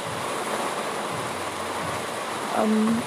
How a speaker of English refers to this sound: It's night, it's evening, it's raining, it's very pleasant and beautiful. I feel so great about the weather. Such a cool breeze.